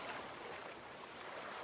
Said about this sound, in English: Even when bigger ones break loose, they slide majestically down the sides of the glacier, causing waves to gently rock the boat.